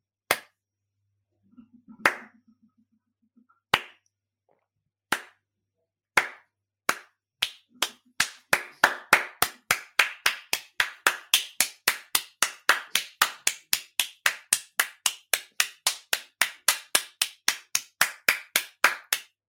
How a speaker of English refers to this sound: Thank you so much, Harry. You're going to get a slow clap.